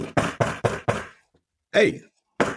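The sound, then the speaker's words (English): Five quick, evenly spaced knocks on an office door at Newhouse School, Building 2, rap out in a steady rhythm, fairly loud, seemingly voiced as an imitation, followed after a pause by a short spoken call. “a famous knock came at my door.”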